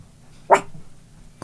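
A single short, sharp dog bark rings out, followed by quiet room tone with a faint low hum and a small click at the very end.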